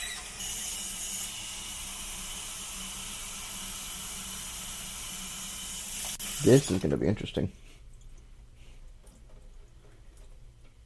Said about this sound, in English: So let's fill this with water.